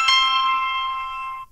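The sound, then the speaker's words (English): A single bright, bell-like phone ring for an incoming scam call from a telemarketer strikes sharply and rings out steadily for over a second before cutting off, loud, with no voices. “Guess it's gonna be part of the show now. Phone a friend!”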